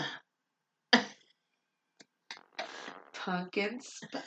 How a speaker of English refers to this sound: I love how you were like, let me clear my throat first.